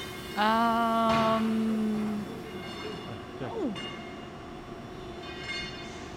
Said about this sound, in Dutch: Er gaat net een tram weg hier. Ja. Een hele moderne tram.